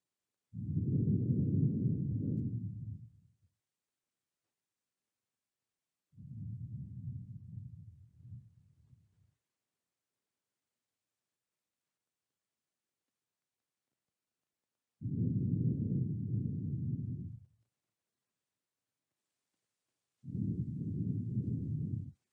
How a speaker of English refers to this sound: Become aware of your heartbeat. Listen to the steady, constant sound of your beating heart.